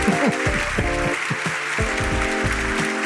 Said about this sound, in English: And the crowd goes wild.